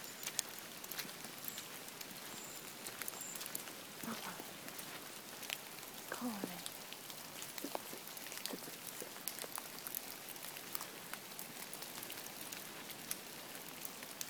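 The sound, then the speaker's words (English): Steady December rain dripping and pattering onto surfaces, with scattered individual drops tapping irregularly over a soft continuous wash; no voices, fairly quiet overall. “And the drip, and the roll, and the drip. December rain.”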